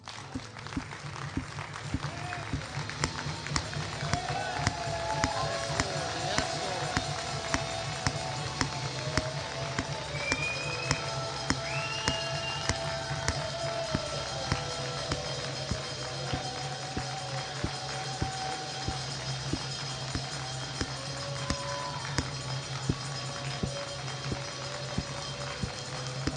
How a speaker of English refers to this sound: So again, on the count of three, I just want you to clap. That's simple. One, two, three.